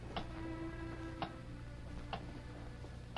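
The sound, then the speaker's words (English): A large clock ticks steadily, with sharp, crisp clicks about once a second over a low, constant hum, and no one speaks. “The third man, still wearing the white apron of a bartender, looked nervously from the bedroom door to the big clock.”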